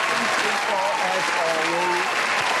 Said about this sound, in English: Let me give a round of applause for everybody tuning in with us on this Monday.